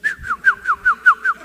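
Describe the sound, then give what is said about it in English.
Someone whistles an imitation of a bird call: a quick run of about seven downward-sliding chirps in a steady, even rhythm, fairly loud, with no talking. “I can be whatever I want to be. I feel like I'm a bird.”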